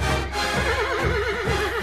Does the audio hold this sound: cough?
no